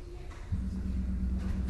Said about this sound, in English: So give us a sort of Bartok third movement, sort of beautiful gong sound.